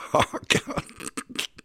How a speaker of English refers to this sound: I coughed out a phlegm.